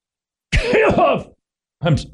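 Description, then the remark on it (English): A loud throat clearing lasting under a second, with a rough, gravelly cough-like rasp, followed by a short pause and a second brief throat-clearing burst. “did we get our cough button fixed? Because I've got this little thing just...”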